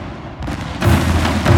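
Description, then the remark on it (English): A Cadillac explodes after a lit book of matches is tossed at it, with a heavy boom that swells into a loud, roaring rumble, with a second surge of blast noise near the end and no voices. “Arnold started to shout something, but Cop Dracula tossed the matches, and all anyone heard was... boom.”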